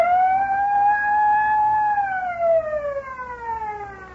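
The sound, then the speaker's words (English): A loud electronic truck anti-theft alarm siren from an automatic alarm system holds a steady high wail, then slowly glides downward in pitch, its rich harmonic tone sounding alone over a low background rumble. “Denton, your auto alarms are certainly loud enough.”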